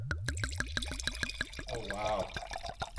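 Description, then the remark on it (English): Wine glugs out of a bottle into a wine glass, miked up close, in a quick, steady series of hollow gurgles, then settles into a softer bubbling, splashing pour that carries on to the end. “Getting up close and personal with the wine glass here.”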